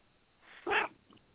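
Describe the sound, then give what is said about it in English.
A male cat lets out one short, fairly loud meow that rises out of quiet, then fades into near silence. No one speaks. “You've got a cat interested to hear this, so you can hear him.”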